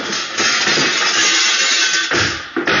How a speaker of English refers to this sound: Grab one of those chairs and throw it through the glass. Okay, I guess you're right. Here goes.